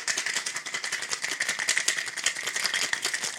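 A tiny promotional Ketel One cocktail shaker rattles with ice as it is shaken again while making a Spymaster cocktail, in a fast, steady rhythm, dense clattering hits running continuously for a few seconds with no voices.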